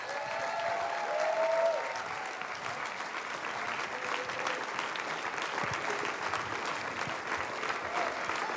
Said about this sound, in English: Come on, let's clap our hands as we welcome the man of God.